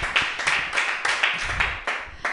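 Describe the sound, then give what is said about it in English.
An audience claps wildly for the show's host, a dense, continuous burst of many hands with sharp, uneven peaks, loud, without pause for the whole stretch. “Everybody, while we're waiting for plugs, clap wildly”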